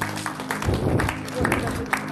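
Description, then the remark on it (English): A crowd claps their hands for God together in a steady burst of applause lasting a couple of seconds, loud and full, with a murmur of voices mixed underneath. “Clap your hands for God.”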